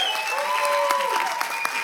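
A steady round of applause from a group for a woman on her birthday, dense overlapping claps with a few sharper individual hits, sustained at an even moderate level throughout.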